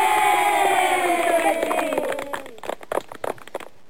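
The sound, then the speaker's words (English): An applause and cheering sound effect: a crowd cheers and whoops loudly, voices sliding downward, then scattered applause takes over as the cheering fades, ending in a few sparse claps. “Hit the claps for you.”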